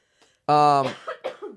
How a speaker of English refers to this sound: Oh, yeah, cough.